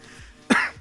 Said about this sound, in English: I have this weird, I have been having this cough. It's not because of you.